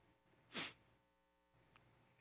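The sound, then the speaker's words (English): A single sharp sneeze bursts out, brief, followed by near silence and a faint soft breath or click afterward. “Bless you.”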